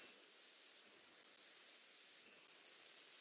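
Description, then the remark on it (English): A faint, steady high-pitched buzzing of cicadas and crickets drones on without a break, an outdoor insect chorus on a day at the end of summer or beginning of fall, with no voices. “You know, today we had lovely outside, the semis and cicadas and crickets. Maybe you heard them on the microphone.”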